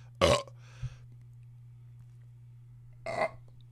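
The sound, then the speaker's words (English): Two loud burps separated by a pause of nearly three seconds, each a harsh, rumbling gurgle, with a small throaty sound after the first and a low steady hum underneath. “I should put safety tape on that burp.”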